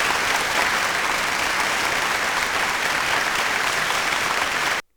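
A round of applause for Jacoby Brissett and the Indianapolis Colts: many hands clapping in a dense, steady, fairly loud patter that holds evenly for nearly five seconds, then cuts off abruptly. No one speaks.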